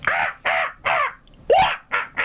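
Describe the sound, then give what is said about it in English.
A voice imitates a monkey call heard in the bridge of a 12-minute disco song from 1979: six harsh, raspy screeching bursts in quick succession, loud and hoarse, with one higher, rising shriek in the middle and no spoken words. “There's a bit in it where they go to the bridge and you hear a monkey go...”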